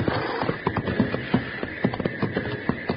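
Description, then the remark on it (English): The hooves of a horse named Joker, acting up at a snorting train, clip-clop in an uneven, shuffling rhythm, a dozen or so sharp knocks over a steady hiss of background noise, with no voices. “Whoa, Joker, whoa. Doggone it, you cut that out or I'll put you to bed without any hay.”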